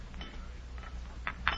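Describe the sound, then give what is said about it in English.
A glass bottle of photography chemicals clinks in the old cupboard by the door: a few soft knocks, then two sharper, brighter clinks close together at the end, over a steady low hum with no voices. “Is this the bottle?”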